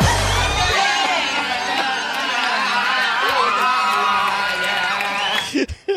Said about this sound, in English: So you were actually at the show, and all the girls were just, like, screaming nonstop. Oh, and it was just insane.